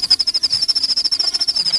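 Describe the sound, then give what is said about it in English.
Crickets chirp steadily in a rapid, even pulsing trill at a single high pitch, moderately loud and with no voices or other sounds. “Cue cricket noise.”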